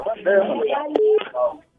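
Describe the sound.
Short steady telephone tones as a broadcast host tries to reconnect a lost phone call with a guest, one held for about a quarter second and another starting at the very end, mixed with garbled, voice-like line noise, jam on the phone line.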